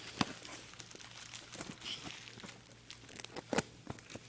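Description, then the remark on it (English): Gift wrapping being torn open: irregular crackling rips and crinkles of paper, with sharp louder tears near the start and toward the end, over a faint low hum and no talking. “Go ahead and start opening yours”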